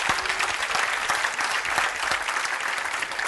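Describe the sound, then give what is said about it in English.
A crowd claps steadily, dense overlapping hand claps forming a sustained wash of applause at even loudness throughout, with no voices standing out; listeners at a sermon clap to affirm they believe the Bible is the inspired, infallible, inerrant word of God. “How many of you believe that the Bible is the inspired, infallible, inerrant word of God? Clap your hands.”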